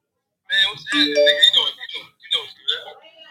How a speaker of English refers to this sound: Man, hold on. My phone going off. Hold on real quick, bro.